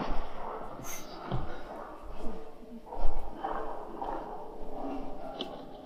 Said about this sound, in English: Sorry, one sec. Let me close this door because all that sound is crazy.